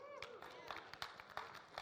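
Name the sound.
audience clapping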